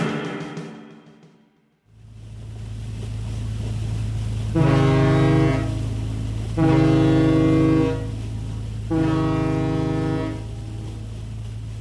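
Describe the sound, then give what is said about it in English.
A deep, steady ferry engine drone rumbles throughout while the ferry's horn sounds three long, loud blasts with short gaps between them, heard from the ferry's cargo bay. No one speaks. “I step out into the ferry's cargo bay and lock my car door”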